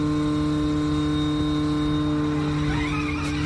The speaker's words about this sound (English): I think you had a video of that Audi, as cool as it is, 670 something horsepower, all wheel drive. Yeah. This Dakar Audi rally car. Yeah. You would picture this thing to be like the meanest sounding thing in the world.